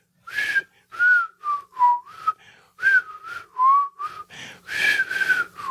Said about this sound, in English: For some reason, I can't whistle right now. I could usually do that, but that was the theme song. I know the theme song. I don't know what that was. That that was an attempt right there.